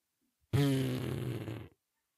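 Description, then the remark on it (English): A person blows a loud, buzzy raspberry imitating a fart, one sustained burst lasting just over a second, alone with no talking. “Just says fart noise.”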